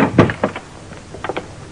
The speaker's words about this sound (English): But as I opened the door to my apartment... Hiya, pal. Come on in and close the door.